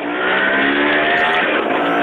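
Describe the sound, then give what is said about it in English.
A motorbike engine, ridden by a man, revs loudly and steadily as it roars past, its high buzzing whine holding for a couple of seconds with no voices over it. “He's on a motorbike!”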